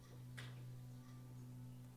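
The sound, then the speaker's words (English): A clock ticks, with one crisp, sharp tick standing out and fainter ticks following, all over a steady low electrical hum. No one speaks. “Don't let the ticking of the clock distract you from the time in front of you.”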